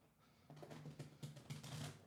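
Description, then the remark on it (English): A deck of cards being riffle shuffled, a rapid fluttering burst of card clicks swelling over about a second and a half, with no voices. “Let me try to riffle shuffle here.”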